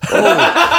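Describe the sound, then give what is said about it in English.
A single loud vocal burst: a voice blurting out a word in the manner of a fake sneeze, short and explosive, with a slight chuckling quality. “Says it like a sneeze.”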